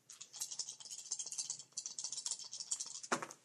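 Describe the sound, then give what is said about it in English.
Three dice are rolled in a tabletop game's physical conflict, rattling in a steady, bright clatter of rapid clicks for about three seconds, ending in one louder, sharper clack as they land on a six, a five and a one. No one speaks. “That's exactly what I rolled.”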